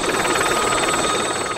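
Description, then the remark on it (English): A helicopter, not an air ambulance, coming down to land by a big house in a protected area, its rotor a loud, steady whirring drone with a fast rhythmic chop running throughout, no voices. “It's coming down. It's landing by the big house.”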